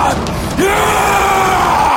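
An actor lets out a loud, sustained scream at the camera that rises into a long, raw howl, filling the whole two seconds with strained, harmonic vocal intensity and no spoken words.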